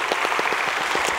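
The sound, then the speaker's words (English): A church audience claps steadily for a boy publicly professing his faith, a dense patter of many hands filling the space at moderate loudness with no voices on top. “These folks love you, and they're like your cheering section today.”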